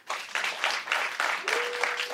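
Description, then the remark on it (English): Scattered clapping from a modest audience at a debate, as undecided audience members applaud, a steady patter of overlapping hand claps that holds for a couple of seconds, fairly loud, with no one speaking over it. “And finally, clap if you're undecided.”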